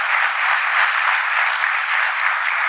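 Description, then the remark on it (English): A crowd claps steadily and densely after a speaker's line about North Carolina adding 194,000 jobs, holding one loud, even level from start to finish with no fade, so the applause seems to stop suddenly rather than die away. “You could hear the clapping end abruptly.”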